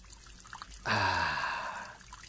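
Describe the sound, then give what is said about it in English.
A man urinates outdoors in public in a city: a sudden steady stream of liquid splashes for about a second, hissing and fairly loud, then fades out, with no talking. “Public urination is a crime in this city.”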